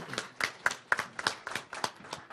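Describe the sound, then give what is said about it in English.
A burst of audience applause at the end of a presentation, with many quick, sharp claps blending into a steady, fairly quiet patter over a couple of seconds. “Yep, give Bob a big round of applause.”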